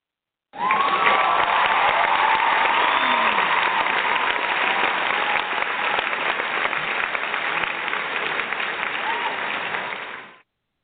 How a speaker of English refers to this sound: Yeah, let's give her an applause.